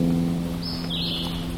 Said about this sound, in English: I can't see these pretty birds, song birds. Who's that guy? You recognize that one? Sounds like a robin that's kind of gone insane.